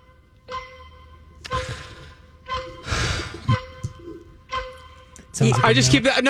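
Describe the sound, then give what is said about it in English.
A quiz countdown clock ticks steadily about once a second during a movie trivia question, over a faint sustained hum, with a breathy sigh in the middle and a louder burst of noise near the end. “But that's like that skit from wherever, and the countdown clock always drives me nuts.”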